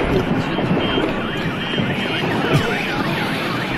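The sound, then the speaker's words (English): Several car alarms wail at once after an explosion's shockwave blew out windows, their rising and falling electronic tones overlapping steadily over a dense, rumbling background, with faint voices mixed in. “Just the shockwave, like, blew out windows. And I mean, it just freaked out. There's not a car alarm.”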